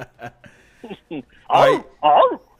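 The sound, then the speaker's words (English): After some brief talking, a person lets out two loud, harsh barks in imitation of a dog, spaced about half a second apart. “And you barking.”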